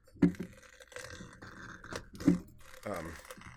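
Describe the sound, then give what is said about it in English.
Shards of ice, broken from a whiskey ice cube, drop into a cocktail glass for a Tom Collins with several sharp, crunchy clinks and clatters spread over a few seconds, followed by a brief voice near the end. “I did my best to shatter this whiskey cube into more manageable shards. So, there it goes. Ice.”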